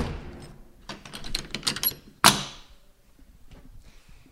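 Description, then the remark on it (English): A big heavy church door is swung shut: a run of creaking, rattling clicks builds up before a single loud, booming slam that rings out briefly in a reverberant space. “Let's get this big door closed.”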